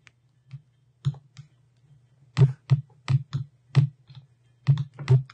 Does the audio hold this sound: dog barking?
no